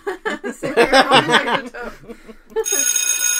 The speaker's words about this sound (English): God, it's so professional. That bell was our sting for some news.